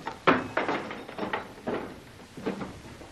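A door is opened with a series of solid clunks and scraping rattles, like a heavy latch and handle being worked, with no voices over it.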